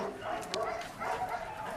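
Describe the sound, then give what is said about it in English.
Several rescued dogs bark and yelp in short, overlapping bursts, the noise rising and falling over a steady background din. “All the dogs you see here or were shot, were broken, or were hit by a car or something like that.”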